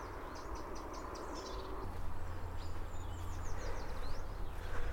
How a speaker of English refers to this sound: Oh. And that's a wren clicking away.